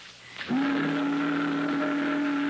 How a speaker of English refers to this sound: That's a boat whistle. That's another sound of life.